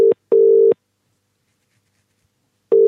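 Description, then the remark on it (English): The ringing tone of an unanswered phone call, a steady mid-pitched electronic burst sounding in a double-pulse pattern, then a long silence before the next ring starts. Clear, with no voices. “I should have made a bet with him saying, I bet you you won't even fucking answer the phone.”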